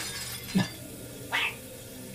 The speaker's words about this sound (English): Remy will head back to the apartment, give it a good long look over, and head over to the sink and start doing some of the dishes. Purposely smash one.